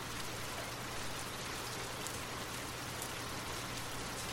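Steady rain falls continuously, a dense, even hiss of countless drops with no pauses or gusts. It stays moderately quiet, with no voices or other sounds.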